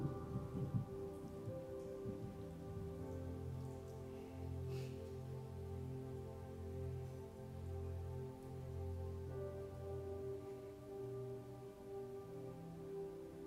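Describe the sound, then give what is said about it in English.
Steady rain patters throughout while a deep, drawn-out rumble of thunder rolls underneath, heavy and continuous for several seconds. No one speaks. “Yeah, you know, just hearing that thunder roll just made me think about the cross.”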